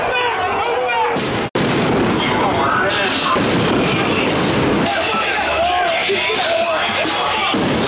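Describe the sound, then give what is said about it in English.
Portland Police Bureau non-lethal munitions (tear gas, pepper balls) going off in loud, sharp bangs as police fire into a crowd of counter-protesters in Portland, amid a dense roar of shouting, with one abrupt cut to silence partway through before the chaos resumes. “Evidence of police shooting indiscriminately into the crowd.”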